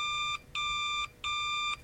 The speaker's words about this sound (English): Oh! It's the bat phone. The bat phone.